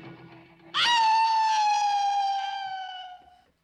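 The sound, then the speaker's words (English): A single long, loud howl at the end of a movie trailer bursts in after a low murmur and holds a high, steady pitch, drifting slowly downward for nearly three seconds before tapering off. “And then, yeah, big old howl at the end.”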